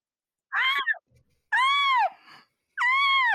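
Three loud, high-pitched shrieking yells burst out one after another, each about half a second long with short gaps between, sharp, from taekwondo fighters squawking as they score points during a match.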